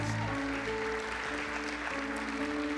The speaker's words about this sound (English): Come on, let's give him a hand clap of praise in this house.